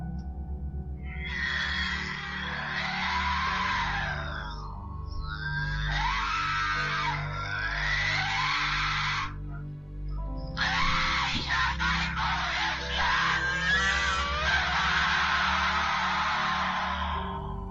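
A woman howls and cries in pain, loud, high, wavering wails in three long bursts separated by brief pauses, over a low, steady background hum, in a recording made by a priest.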